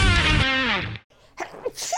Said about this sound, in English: Oh my God, I sneezed, sorry.